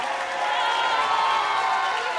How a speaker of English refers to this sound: This is a display of craftsmanship like no one has ever seen before. Yeah. A round of hearty applause absolutely.